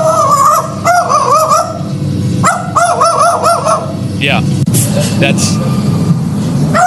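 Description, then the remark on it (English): A pet magpie imitates the bark of a pit bull in a series of loud, hoarse, honking yelps, coming in quick clusters, with a person speaking briefly and rustling noise in the background. “proof at the end that it is actually a bird, but she's mimicking her buddy.”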